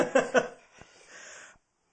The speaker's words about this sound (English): I think I got another cough coming up. I know, you've been sick. This is going to be a big one, so back up from the mic.